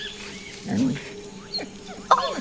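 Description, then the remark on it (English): A lost puppy stirs and scuffles in short, soft bursts, with a few faint high squeaks and one sharper yelp-like sound near the end. “Oh, a puppy.”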